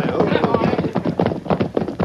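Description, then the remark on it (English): Horse hooves clip-clop in a steady, quick rhythm of sharp knocks as riders head for Rock Ridge, fairly loud over a continuous busy rumble of background noise. “Slow down. Let the others get ahead. Easy, horse.”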